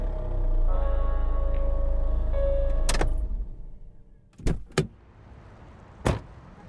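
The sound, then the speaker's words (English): A car engine idles and cuts off as people get out of the car, then car doors thunk shut in sharp, quick succession—two quick slams followed by a third a moment later, with faint rustling between. “So we exit the car, and we approach Cortex Studios.”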